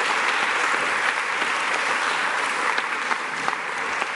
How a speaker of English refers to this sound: Give a round of applause to all those who volunteer to lead our young people.